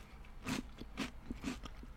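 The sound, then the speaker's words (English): Crunching of cereal soaked in plenty of milk about a minute after pouring, a steady series of wet, crackly bites roughly every half second, fairly quiet with no talking. “There's a crunch. The crunch is still there.”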